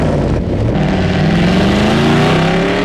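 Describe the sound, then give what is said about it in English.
The loud engine of the Batmobile revs and accelerates, its droning pitch climbing steadily as it pulls away, a continuous roar with no voices over it. “Quick, Robin, to the Batmobile!”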